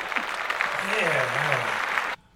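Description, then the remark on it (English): A steady burst of crowd applause for a mock campaign promise of better health care, lasting about two seconds, dense and fairly loud, with a voice rising faintly underneath before the clapping cuts off abruptly. “Clap that.”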